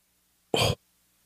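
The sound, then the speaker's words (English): A single short, breathy yawn, a quick loud vocal exhale lasting about a quarter second, alone with no talking around it. “Sorry, I'm yawning.”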